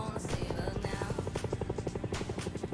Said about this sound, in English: As some cops fly by in a helicopter